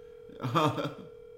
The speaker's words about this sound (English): Let's see if I can get him on the phone. He's kind of a busy man.